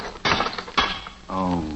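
A valve handle breaking off as it is turned during a plumbing repair to turn off the water: two harsh, grinding mechanical cracks about half a second apart, followed by a steady, buzzing tone that could be a short vocal exclamation.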